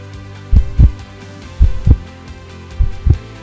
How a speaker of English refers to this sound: And when he finally heard the man's heartbeat come back, he was so happy that he cried.